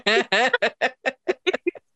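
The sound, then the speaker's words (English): A bird sound effect: a quick run of about nine loud squawking calls, the first two long and cackling, the rest shorter and choppier as the sequence winds down. “Double birds on that one, folks.”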